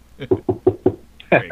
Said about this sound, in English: We'll see. Knock on desk.